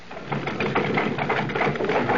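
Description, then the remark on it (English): A heavy vehicle engine idles with a steady, throbbing low rumble and a faint rhythmic chugging, as an omnibus pulls up and stops before a shop door, sitting running without pause. “Oh, bless my soul, the omnibus. And stopping before my shop door.”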